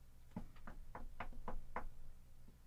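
A quick, steady run of about six knuckle knocks on a wooden surface, moderately loud, evenly spaced with no talking over them.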